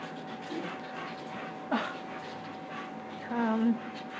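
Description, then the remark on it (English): A female dog pants steadily, with a short whine midway and a longer, higher whimper near the end, all fairly quiet against a soft background hum. “Jeez, she's a very jealous dog, too.”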